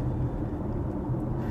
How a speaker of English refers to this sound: And just cruising and, you know, in the car.